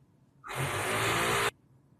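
A power drill runs in one steady burst of about a second, a loud, harsh whirring roar with a high whine on top, starting and stopping abruptly. No one speaks.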